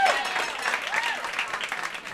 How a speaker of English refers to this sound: I don't know. I don't like that applause.